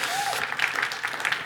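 An audience in New Jersey claps steadily for a second and a half, a dense, crackling patter of many hands at an even loudness, with a faint whoop rising briefly at the start.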